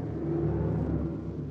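A large car pulls up at the end of the Brooklyn Bridge, its engine rumbling steadily, a low, continuous motor drone with harmonic hum, as if idling or rolling slowly to a stop.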